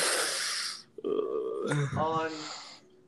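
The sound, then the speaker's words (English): A loud, rushing breath blows straight into the microphone for nearly a second, followed by voiced, speech-like sounds. “Kind of looks like the, who's breathing in the mic?”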